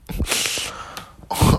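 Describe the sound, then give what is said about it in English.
A crinkly, battered mattress with a dent in the middle rustles loudly in two bursts of crackling noise as someone shifts their weight, with a brief lull in between. No one speaks. “Bro, this is the loudest mattress in the world.”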